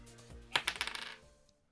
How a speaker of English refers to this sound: All right, rolling dice.